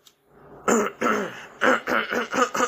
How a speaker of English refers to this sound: Let me clear my throat, because I'm going to say this.